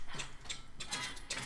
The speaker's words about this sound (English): You hear about three or four different locks being unlocked.